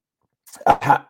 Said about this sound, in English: Let me clear my throat.